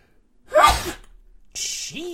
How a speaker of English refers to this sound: I'm going to sneeze. So get ready.